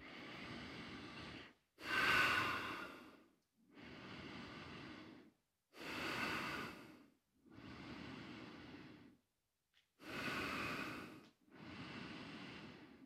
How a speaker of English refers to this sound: So you're just connecting those two sides, deep breathing. Enjoy.